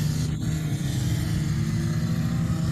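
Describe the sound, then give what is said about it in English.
A race car engine drones steadily and loudly for the whole stretch, a dense low roar that holds constant with no talking over it, at an S curve of a racetrack during a cup race. “So anyway, this is our favorite S curve because we can see a lot of it.”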